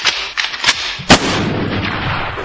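sound effect, gunshots sound effect

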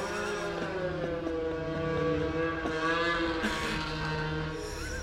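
vehicle, snowmobiles driving past

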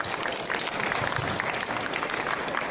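crowd, audience applause

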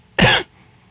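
human body sound, coughing

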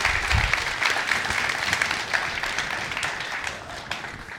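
crowd, audience applauding

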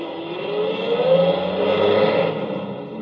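vehicle, truck driving away

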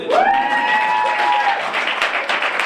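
crowd, audience applause

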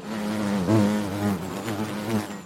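insect, bees buzzing

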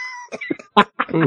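animal, cat meowing

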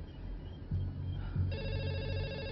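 household object, telephone ringing

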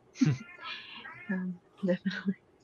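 animal, cat meowing

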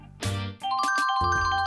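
signal or alarm, cell phone ringing

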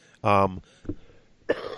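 human body sound, cough

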